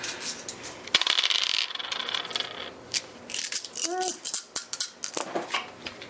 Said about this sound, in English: Go ahead and roll 6 dice for your hull, as it, even with the non-functioning drill, still does manage to slam into you.